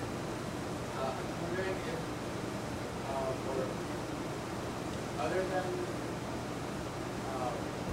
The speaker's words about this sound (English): You'll have to speak up too, because the air conditioner, I can't hear.